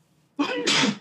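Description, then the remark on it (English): One loud sneeze: a quick sharp intake bursts into a harsh, breathy explosion lasting about half a second. A voice briefly speaks around it. “Bless you.”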